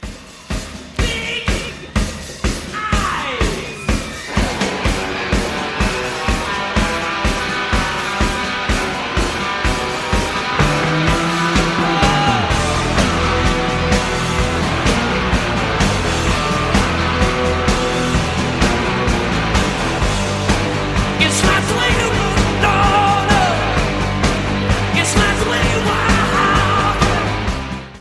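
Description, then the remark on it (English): A live rock concert recording, the fourth track of the set list: loud, dense rock music driven by a steady pounding drum beat under thick distorted guitars, with scattered yells and whoops rising from the crowd. “If you don't really understand what he's saying, you can scream … with him.”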